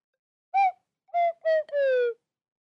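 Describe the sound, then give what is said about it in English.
A slide whistle plays four reedy notes alone: three short toots with brief gaps, then a longer held note that sags slightly in pitch at the end. Moderately loud, with no talking. “Think I wish I could play that on the slide whistle.”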